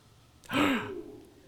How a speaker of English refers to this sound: Gasp.